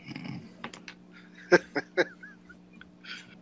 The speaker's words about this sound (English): Okay. Angry typing. There we go.